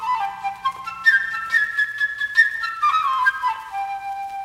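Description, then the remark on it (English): A flute, representing Sasha the bird in the score of Peter and the Wolf, plays a quick, bright melody high in its range, trilling and leaping between notes with short flutters before settling on a held tone; no voices. “The bird, whose name is Sasha, by a flute, which plays way up high.”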